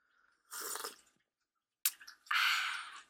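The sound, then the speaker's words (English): A person loudly slurps hot tea: one airy slurp, a short pause and a wet click, then a second, longer hissing slurp, with no one talking. “I'll take this opportunity to slurp my tea.”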